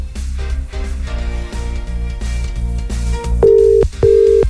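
Music plays for a few seconds, then an outgoing call's ringback tone sounds twice, two steady, fairly loud beeps with a short gap between them, over the continuing music.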